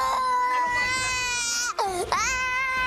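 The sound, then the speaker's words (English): A five-year-old boy cries loudly and continuously, with high, wavering wails, a sharp pitch drop and brief catch in the middle before the sobbing rises again, captured on police video as officers yell at him. “When the boy doesn't stop crying, one officer screams just inches from his face.”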